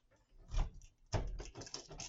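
Quick bursts of clicking from someone typing on a computer keyboard, with a short pause and then a denser, steady run of keystrokes, not loud.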